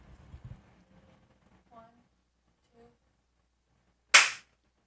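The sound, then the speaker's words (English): A single sharp hand clap, made to mark the start of a recording, rings out loudly after a few seconds of quiet, preceded by faint murmuring voices and soft scattered sounds at the start. “Okay, tell me when to clap or tell me when to go.”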